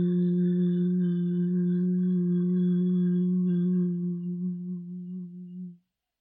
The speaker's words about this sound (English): So keeping your lips closed as you reach the end of the hum sound. Taking another deep breath in. Hum. And observe how it feels. We'll do it one more time. Breathing in. And exhale. Hum.